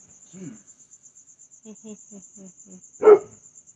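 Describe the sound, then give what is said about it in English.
A dog lets out one sharp, loud bark near the end, after a few soft, short whimpering sounds, with a steady high-pitched chirring like crickets running throughout. “What on earth are you barking at?”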